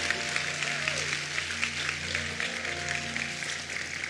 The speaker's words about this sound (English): And church, since we got a good hand clap going this morning, would you welcome one of our children's pastors up this morning,